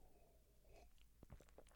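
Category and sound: food or drink, sipping a drink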